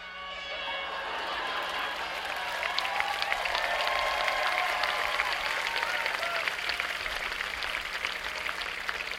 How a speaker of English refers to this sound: We got a lot of horns out there on those boats. All right, let's try. Everybody, get ready. I'm gonna count on the count of three. I want to hear everybody's air horns. You ready? One, two, three, go!